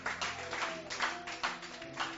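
A church audience claps hands in praise to the Lord in a steady rhythm, about two beats per second, over a low sustained musical drone, fairly loud and continuous throughout.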